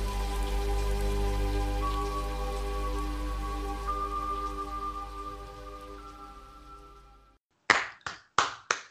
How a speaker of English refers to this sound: That's just me applauding the speech.